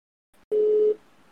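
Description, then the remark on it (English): A single steady, mid-pitched phone ringing tone sounds for about half a second over a speakerphone, then cuts off into faint hiss before a brief click at the end. “Is it ringing?”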